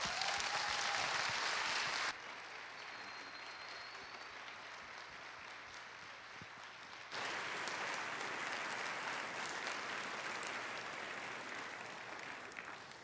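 A crowd gives another round of applause, clapping steadily in a dense, continuous wash lasting over ten seconds, dipping slightly in loudness midway before swelling again, with no voices standing out.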